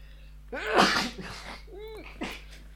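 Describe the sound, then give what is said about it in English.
A stifled, held-in sneeze bursts out in a muffled rush with a short strained vocal catch, followed by a small breathy aftershock; fairly loud against a low steady hum. “That sneeze went inside.”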